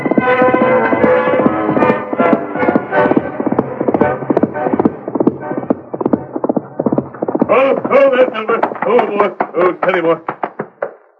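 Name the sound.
horse hooves clip-clopping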